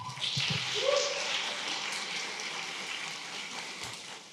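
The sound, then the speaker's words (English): A steady wash of clapping from a crowd, dense and unbroken like rain, holding an even level for several seconds without any voices standing out, as three guests welcomed to the stage take their seats. “Let's keep the round of applause going as they take their seats.”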